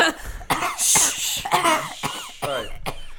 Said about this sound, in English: You always cough so much